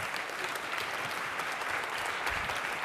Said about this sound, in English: Please give Brian Gainsler a big round of applause, ladies and gentlemen.